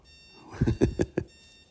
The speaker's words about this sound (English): That's my wife's alarm. Maybe she'll get up and shut it off.